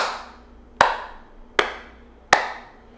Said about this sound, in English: You guys hear a clap?